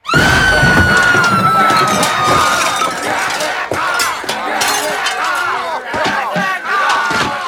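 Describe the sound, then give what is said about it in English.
A frenzied undead horde shrieks and wails in a dense, chaotic chorus while attacking the yard and stage of an old playhouse, with crashing and shattering impacts scattered throughout, loud for the entire stretch with no clear speech. “Withal, the troublesome undead did most viciously attack ye old Royalton in yard and stage, place of the spectacle of plays, all whilst shrieking”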